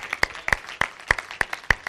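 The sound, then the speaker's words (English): An audience claps together in a steady, even rhythm, about three sharp claps per second, fairly loud with no voices over it. “Keep clapping”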